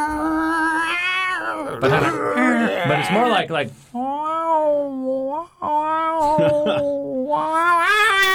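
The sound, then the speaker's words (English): A man's voice mimics a bunch of cats yowling in his yard in the middle of the night, with long, wavering, whiny wails repeated several times, loud, after a few quick spoken words. “But it's at the middle of the night. There's a bunch of cats around.”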